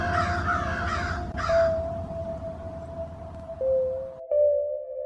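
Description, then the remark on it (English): In a cemetery in autumn, a crow gives three harsh, rasping caws in quick succession from some distance away, then falls silent while a steady, faint tonal hum carries on in the background. “First a sparrow, and then a cardinal, and finally a crow calling from the distance.”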